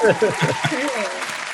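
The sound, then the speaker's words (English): A short burst of recorded applause, a dense crackle of many hands clapping with a few cheers mixed in, loud at the start and holding steady for about a second and a half. “clap track.”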